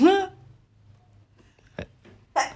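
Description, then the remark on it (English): A sneeze: a voiced, falling intake at the start, a brief sharp click midway, then a loud hissing burst of breath near the end, over a low steady hum. “Bless you. Not me.”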